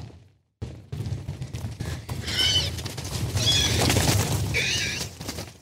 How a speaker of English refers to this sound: If that noise sounds like horses running, that's because the stampede is similar to horses running. But that noise, the squeal they make as they run by, is actually a female horse in heat.